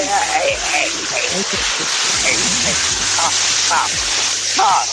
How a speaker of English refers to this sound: So you got the water running, bro? I can hear the water.